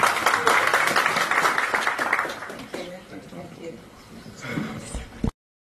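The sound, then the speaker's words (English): An audience applauds the panelists at the South African LGBTI Business Summit, a dense patter of clapping that starts loud and gradually thins out over a few seconds, with some voices murmuring underneath toward the end. “And I think let's give a hand clap to the panelists.”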